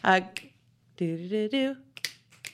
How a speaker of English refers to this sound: They snap. They don't clap. No, they snap.